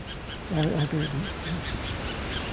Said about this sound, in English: That's an alarm call, or a call that's saying there's danger around.